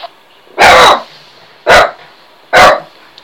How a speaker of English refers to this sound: Happy dog in the background.